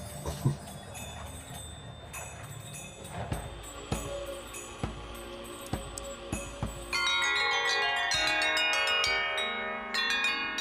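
Wind chimes clatter with scattered metallic strikes, then swell into a dense, shimmering wash of overlapping ringing tones that sustains loudly to the end, with no voices.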